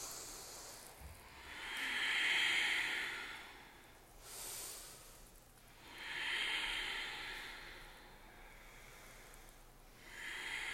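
Slow, audible ujjayi breathing: long hissing inhales and exhales rising and falling in a steady rhythm, with a brief pause between breaths and no talking.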